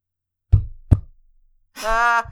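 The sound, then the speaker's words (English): Two dull, heavy knocks land in quick succession on a hard surface in a farmhouse living room, knocking in answer to a question, followed after a pause by a brief voice. “They knock back one for no.”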